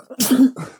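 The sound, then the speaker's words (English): Two quick sneezes, the first a sharp, forceful burst and the second a softer follow-up a moment later, with no talking. “Bless you.”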